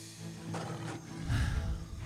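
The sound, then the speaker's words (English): A tiger growls in a deep, rumbling rasp that swells louder near the end. It is alone, with no voices. “The tiger growled at that news item.”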